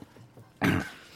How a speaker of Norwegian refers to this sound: Jeg kremter.